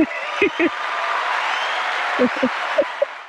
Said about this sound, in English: I bet you we got an applause. Of course.